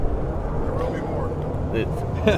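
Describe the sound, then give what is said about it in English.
An F-86 jet aircraft roars overhead at a campground in a steady, broad rush of engine noise that fills the whole stretch, with faint voices murmuring underneath. “What's a daily without some jet noise or something flying by?”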